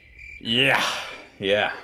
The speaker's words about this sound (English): You kind of were like excited and you're like, yeah, I'm gonna do this, and then it was just crickets.